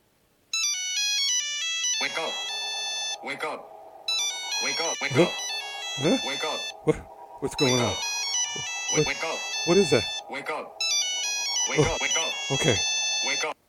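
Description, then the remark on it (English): A phone's musical ringtone plays for an incoming prepaid call from an inmate at a county correctional facility, a bright electronic melody repeating in loud bursts with short gaps, while vocal sounds run over it throughout. “I guess I gotta get this call.”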